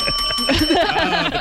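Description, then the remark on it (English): A bell rings with bright, sustained tones that hold steady through the whole short moment, sitting over a busy mix of indistinct background sound and faint voices. “The bell comes in.”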